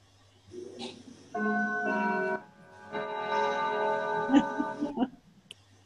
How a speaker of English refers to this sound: I thought it was time. Oh, it's time. We have that clock has the same chimes as my childhood grandfather.